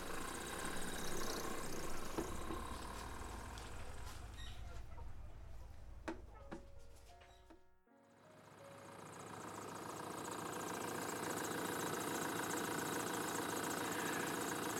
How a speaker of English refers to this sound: But right when she finished her sentence, he had already started the truck and was driving away.